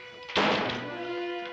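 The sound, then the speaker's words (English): A trap door drops open with a single heavy wooden thunk, followed by a lingering resonant rumble that slowly fades. No one speaks. “Trap door, sweetie pie. You're needed.”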